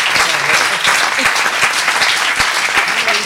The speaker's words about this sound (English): Keep that up. I resign, yes. Keep that applause going, ladies and gentlemen.